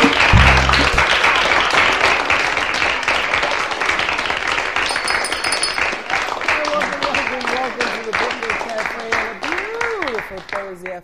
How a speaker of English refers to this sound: And they increased the applause on that.